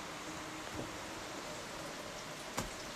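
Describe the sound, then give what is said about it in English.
Rain starting to come in hisses steadily across the whole range in an even wash, with a couple of sharper, louder drop splats around the first and final seconds. No voices. “Man, the rain's starting to come in on me.”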